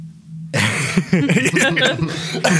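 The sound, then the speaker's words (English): A person coughs several times after a brief quiet start, loud, rough bursts in quick succession, mixed with breathy, chuckle-like vocal sounds. “Jesus, now you're doing it. Coughing for real.”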